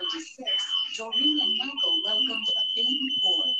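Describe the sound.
A steady, high-pitched electronic beeping tone runs through the whole clip at a moderate level, sitting beneath continuous conversational speech.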